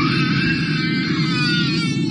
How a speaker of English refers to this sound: Well, I want to tell you about a woman who's going viral on TikTok after she posted video of a baby crying on her flight. It seems like nonstop. She says this is what she was dealing with for the majority of the flight.